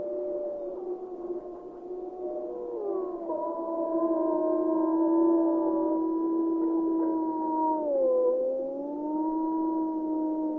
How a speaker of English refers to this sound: They also probably use howling as a way to advertise the number of wolves they have in the pack, the type of wolves they have in the pack. If they have a lot of big male fighters, that's going to come across in a howling bout with another pack.